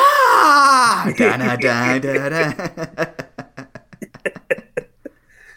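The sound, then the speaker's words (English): A loud voice imitates Triple H's WrestleMania scream, letting out a strained, drawn-out scream that wavers and drops in pitch, imitating someone in pain, then breaks into short choppy bursts that fade out. “Or the Triple H WrestleMania scream.”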